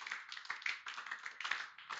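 A crowd claps hands together for the Lord, a dense, continuous patter of many overlapping claps with uneven rhythm, fairly loud and steady throughout, with no voices.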